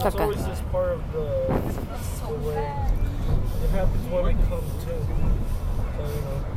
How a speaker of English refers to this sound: Okay, as you can see, we're in a car. I mean, as you can hear, we're in a car and we're traveling to New Jersey.